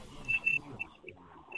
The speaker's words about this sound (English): Turn that off. Well, it is, but that little squeal is still there.